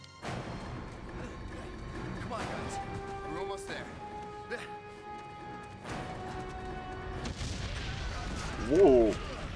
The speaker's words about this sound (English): Was a big explosion.